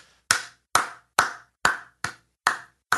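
Seven sharp hand claps ring out in a steady, moderately paced rhythm, each crisp and bright with a quick decay, with no voices in between, applauding a woman who has stacked a banana tower 28 bananas tall.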